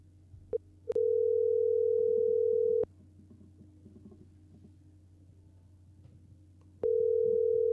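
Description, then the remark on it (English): A steady, mid-pitched telephone tone while a phone call is being placed sounds for about two seconds, falls silent over a low background hum, then starts again, with a faint click just before the first tone. “We're calling”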